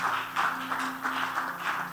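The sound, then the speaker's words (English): An audience claps together as a clap offering to the Lord, a dense, steady wash of many hands with slight rhythmic swells, running continuously, with a faint low sustained tone humming underneath. “You have clapped, but now want to give God an offering.”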